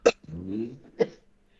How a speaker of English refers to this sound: Well, a COVID cough.